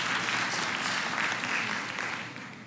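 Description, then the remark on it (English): An audience applauds steadily, a dense patter of many hands clapping at once, holding strong before easing off slightly toward the end, with no voices over it. “No doubt those claps were all from women.”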